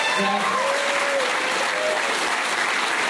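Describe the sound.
Steady, dense applause from an audience welcoming a guest coming out onto a show, a continuous bright crackle of many hands clapping at once, with faint voices mixed in.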